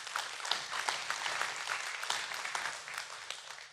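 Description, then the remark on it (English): An audience claps steadily, a dense, continuous patter of many hands at moderate volume that carries on for a few seconds without any voices. “I truly didn't expect a clap.”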